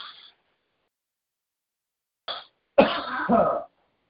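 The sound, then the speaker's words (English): A preacher coughs a couple of times and clears their throat at the start of a sermon, fairly loud, with short bursts separated by silence and a longer rough throat-clearing at the end. “Might be coughing my way through this sermon today, so just excuse me as I cough, cough, cough.”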